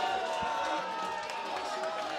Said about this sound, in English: Je veux énormément d'applaudissements pour le Djoon s'il vous plaît et pour vous surtout.